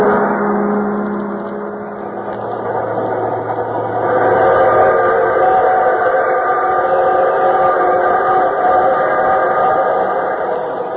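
A freight train with boxcars rolls along in a steady, loud rumbling roar threaded with sustained humming tones, swelling louder after a few seconds and holding throughout, with no voices.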